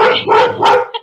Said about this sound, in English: I guess my dog wants to give the message.